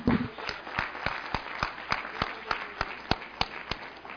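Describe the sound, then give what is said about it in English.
An audience at McCormick's Creek Church in Spencer, Indiana, claps for Him (Jesus) in a steady, even rhythm, roughly fifteen sharp unified claps over a soft wash of scattered clapping and murmur. “Oh, give Him a hand clap.”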